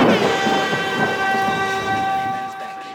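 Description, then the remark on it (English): A thunderstorm with heavy rain during a flash flood: a dense, steady roar of downpour and rumble, threaded with a faint sustained tonal hum, holding loud before easing slightly at the end. No voices. “No better introduction to Paper Tuesdays than an old flash flood.”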